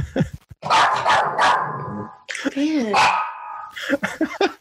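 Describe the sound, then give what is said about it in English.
A small dog barks in a quick run of sharp, high-pitched yaps, breaking into whiny, wavering yelps before a few more short barks. “It's a little dog thing.”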